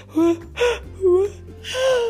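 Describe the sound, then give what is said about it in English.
While reading a story aloud, a person makes a playful imitation of the Rainbow King's sneeze from a magical cold called Shooby Boogies: four quick, breathy voiced bursts with a rising and falling pitch, fairly loud, over a low steady hum. “And that's kind of what it sounds like when you sneeze.”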